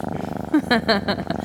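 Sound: cat purring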